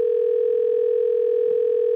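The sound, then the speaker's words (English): A phone line rings as a call is dialed: one steady, buzzing electronic tone holds for about two seconds and then cuts off abruptly. It is loud, with no voices. “It's ringing.”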